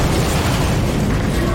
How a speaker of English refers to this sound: Okay, and that's exactly what happens. You run up behind them, you grab them, and you push. The explosion happens right at that point for cinematic reasons.